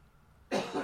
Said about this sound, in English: Whoops. I coughed.